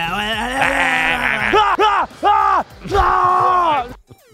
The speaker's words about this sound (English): And also, that's Brady. Brady inspired that. Brady inspired Mahomes to yell? Yeah. How many other quarterbacks are running out of the tunnel going nuts like that?